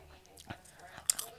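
chewing popcorn

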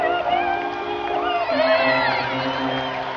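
audience cheering

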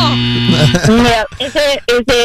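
game buzzer

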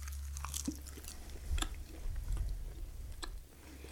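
chewing food

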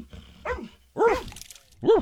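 rescue dog barking

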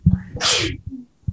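sneeze

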